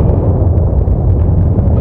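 A deep, loud earthquake rumble during a volcanic eruption roars steadily for about two seconds, a dense low churning with faint crackles on top and no voices.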